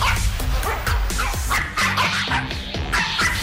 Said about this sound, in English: Call in and tell us what breed of dog you think is making this bark.